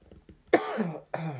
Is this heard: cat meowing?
no